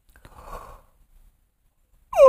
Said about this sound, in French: Oh! Qu'est-ce que ça vous inspire quand je baille? Bien, je vais vous le dire pourquoi tantôt.